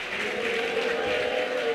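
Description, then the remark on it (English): A church audience claps their hands for Jesus and shouts hallelujah together in a dense, steady roar of applause, with raised voices blending through the continuous clapping for the whole short stretch. “Clap your two hands for Jesus and shout hallelujah.”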